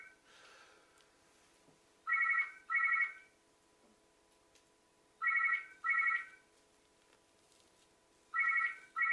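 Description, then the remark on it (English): A telephone rings in the classic double-burst pattern, three pairs of bright electronic trills spaced a few seconds apart, fairly loud over a quiet background hum with no talking. “Actually, can you set the phone ring?”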